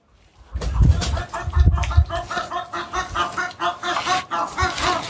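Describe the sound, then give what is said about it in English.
Outdoor farmyard ambience on a windy afternoon, with chickens clucking steadily, a rooster-like call among them, and low rumbling wind gusts blowing over the microphone in the first couple of seconds. “Okay, let's just go walk on the farm for a few minutes, shall we?”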